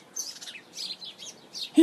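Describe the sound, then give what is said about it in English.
Several birds in a tree chirp in a quick, overlapping series of high tweets, steady, ending with a brief low, louder sound. “The sound of birds is cool, isn't it?”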